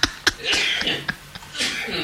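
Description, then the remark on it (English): A fit of sneezing: several sharp, explosive bursts in quick succession, with short breathy gasps and hissy exhales between them, and no talking. “Sneeze attack.”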